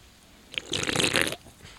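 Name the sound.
sipping a drink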